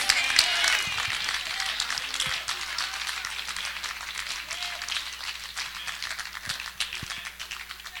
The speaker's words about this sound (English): If you do, come on, give the Lord a clap offering tonight. Shout amen.